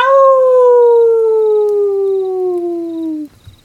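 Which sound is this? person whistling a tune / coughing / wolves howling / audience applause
wolves howling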